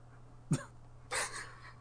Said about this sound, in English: That cough, don't worry, people. The cough is not COVID. It's fine. We promise. It's just a cold.